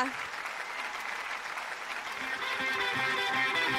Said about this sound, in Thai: ขอเสียงปรบมือด้วยค่ะ